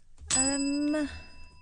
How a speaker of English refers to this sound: That bell is the sound of those numbers being locked in.